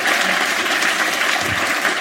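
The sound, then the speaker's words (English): A crowd claps steadily for about two seconds, a dense, even wash of many hands applauding with no voices over it. “I'm not proud of getting a round of applause in the word cunt.”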